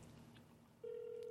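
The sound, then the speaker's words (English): A phone ringing on an outgoing call: a steady, clear electronic ring tone starts partway through and holds to the end over faint low background hum, with no one talking. “Answer the phone. What are you doing?”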